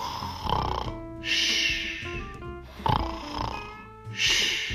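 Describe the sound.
A voice imitates loud snoring for the character Bear in a children's story, with repeated drawn-out rasping snores alternating with breathy hisses in a slow, steady rhythm, fairly loud with no other sounds.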